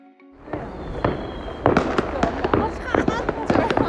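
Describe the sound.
Fireworks for the Lantern Festival crackle and pop in Lanzhou, China, in a dense, irregular barrage of sharp bursts with a steady rumble behind them, while voices murmur faintly in the crowd.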